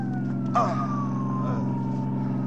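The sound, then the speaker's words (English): An ambulance siren wails in a slow falling sweep over the heavy, steady rumble of a vehicle engine, with a brief clattering burst near the start and no voices. “tell the driver to stop this ambulance.”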